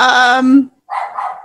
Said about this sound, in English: Sorry. Dogs.